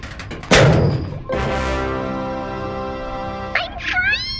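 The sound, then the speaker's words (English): Cutters extended from a robotic arm snap through a metal chain with one sharp clank, then a long, steady metallic ringing hum follows, ending with a few quick rising chirps. “Extending cutters? That's it. You're doing great. This is all very exciting. Cutting chain!”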